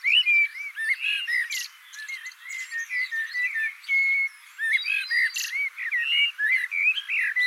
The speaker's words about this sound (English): While listening to the birds in my garden, sometimes it would happen that all of the birds, maybe five or six, in different territories, would all be singing the same song at the same time.